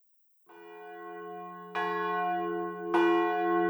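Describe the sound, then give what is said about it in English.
A church bell tolls three slow strokes about a second apart, announcing the hour of None. Each stroke is loud, its rich metallic hum swelling and overlapping the last, with no voices. “At 1:30, Father Simon heard the bells announcing none, and for a moment he almost looked as though he was about to sit up.”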